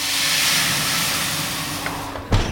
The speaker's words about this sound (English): What I also wasn't expecting was the secret to that crisp, dry crust. It's adding water to the hot oven.